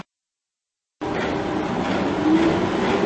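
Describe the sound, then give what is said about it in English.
After a second of silence, a train suddenly rumbles in along a rail line in Frankfurt, a loud, steady roar of wheels on rails with a brief thin squeal partway through. “So we've got our ticket, so we've missed the train.”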